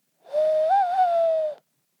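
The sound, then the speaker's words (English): A person makes a family bird call with their voice: a single sustained hooting tone with a slight wavering rise in the middle, lasting just over a second and heard clearly on its own. “I guess that's our bird call, which none of us are going to be good at.”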